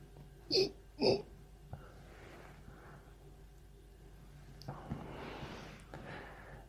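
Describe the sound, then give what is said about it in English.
Two quick, sharp little sneezes from a ferret, one right after the other, followed by faint rustling and low background noise. “Just came out as a normal ferret sneeze.”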